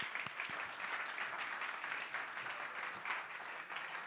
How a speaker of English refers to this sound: Let's applaud God for his generosity.